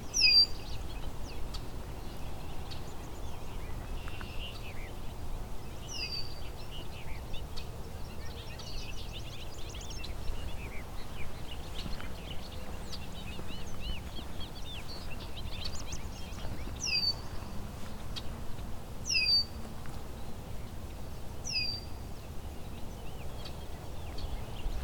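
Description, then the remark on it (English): Repeated bright, bubbling bird songs of bobolinks and red-winged blackbirds ring out over steady low outdoor rumble, several birds calling throughout with no voices. “Some bobolinks. And red-winged blackbird.”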